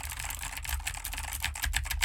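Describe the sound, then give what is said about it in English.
Rapid, uneven clicking of computer keyboard keys being typed on, fairly loud, picked up by an NT USB Mini microphone on its desktop stand, with a low thumping undertone from the desk and no voice. “And now to demonstrate why you probably should use a boom arm with this mic if you plan on gaming, I am typing on a keyboard with the microphone on the provided desktop stand, and here is how much of the keyboard it picks up versus my voice.”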